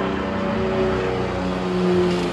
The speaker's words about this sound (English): Damn, this plane is loud.